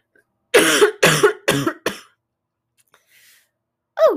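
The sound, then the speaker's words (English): A person coughs four times in quick succession, loud, the bursts shortening toward the end, followed by a short pause and a faint breath, then one more cough begins. “I've been speaking up, and the more I speak up, the more I cough and get a little tickle in my throat.”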